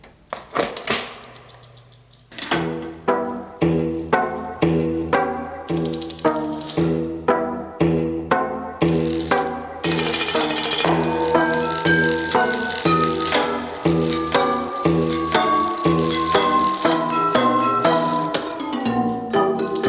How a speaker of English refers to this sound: we're going to play out now with the Nutcracker Suite, or an excerpt of it, played entirely on bicycle parts, courtesy of the great people at Specialized.